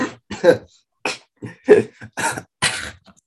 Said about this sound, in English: So, sorry, I made myself laugh and I started coughing there.